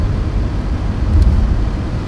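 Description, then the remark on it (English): Steady, low rumble of a line of cars on Red Fox Road, a continuous wash of engine and tire noise that swells slightly midway, with no voices. “And I wish this line of cars went behind me, because it makes me nervous.”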